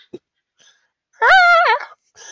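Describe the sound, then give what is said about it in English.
A voice gives a loud, nasal seagull-like squawk lasting about half a second, its pitch wavering in a strained, bird-like cry, with brief faint sounds before and after. “Oh no, he turned into a seagull.”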